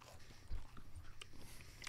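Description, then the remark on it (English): Quiet chewing with a few soft crunchy clicks and moist mouth sounds spread unevenly over a couple of seconds, no talking, just a low background rumble. “You chew, swallow. You gotta chew it, right?”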